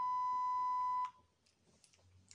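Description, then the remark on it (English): A single steady electronic beep tone played from a phone, loud and pure, holds for about a second before cutting off abruptly, leaving faint background noise and slight rustling. “You did not just pull out a beep tone on your phone.”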